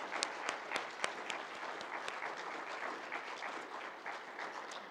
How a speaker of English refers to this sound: Can we just give a round of applause to all our volunteers?